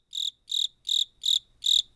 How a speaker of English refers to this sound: And then, crickets.